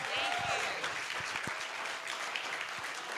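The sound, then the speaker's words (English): An audience applauds steadily for the makers of the film Low Life, a dense, bright patter of many hands clapping at an even loudness throughout, with scattered sharper claps and faint crowd murmur underneath. “So you guys, give a round of applause for the maniacal geniuses behind Low Life.”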